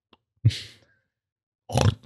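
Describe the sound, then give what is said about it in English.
Two rough, snorting pig grunts, each under half a second and separated by a brief silence, fairly loud with a noisy, breathy texture. “Humans are the only animal that enjoy spicy food. Apart from this pig.”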